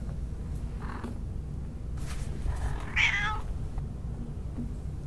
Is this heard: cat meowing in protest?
yes